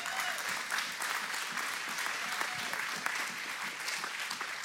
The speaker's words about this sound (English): But I thank you for the applause. I thank you for the encouragement.